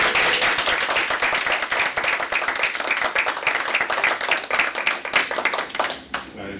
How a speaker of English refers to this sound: Thank you. The motion carries. We have a round of applause.